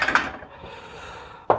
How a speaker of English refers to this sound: So I usually break my eggs into a glass. Actually, I think that glass is going to be far too small. Right, an egg into a bowl.